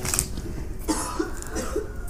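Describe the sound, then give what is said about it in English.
A woman coughs several times in quick succession while smoking marijuana, a rough, repeated hacking at moderate volume over faint background noise, with no talking. “Hear that? Hear the coughing she did?”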